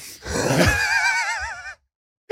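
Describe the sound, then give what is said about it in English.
A single long, muffled vocal exhalation with a wavering, quivering tone, like a yawn held in behind closed lips, lasting over a second before cutting off into silence. “Are you doing like a yawn with your mouth closed?”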